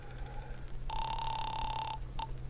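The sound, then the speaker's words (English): A telephone rings with one steady, buzzy ring lasting about a second, followed by the brief start of another, over a faint low hum, sounding as if heard through a handset, as a call is placed to the 25th Precinct police headquarters. “I'll call him, get him to give you a rundown on me, and then we'll both go over to headquarters.”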